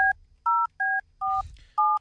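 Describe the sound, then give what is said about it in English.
A phone number being dialed to call the police station in Tekapo, New Zealand: five crisp DTMF keypad tones in a steady, quick rhythm, each a short dual-pitched beep separated by brief gaps, clear with faint background noise. “So we could try ringing a police station.”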